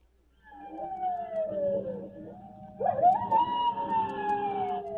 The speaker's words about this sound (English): I wish that coyote quit yowling.